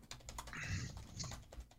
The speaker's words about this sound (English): There we go. There's more typing.